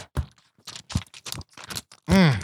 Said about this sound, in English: Man, that's papers. Here it is in my thick paper notebook of ideas. Sounded thick.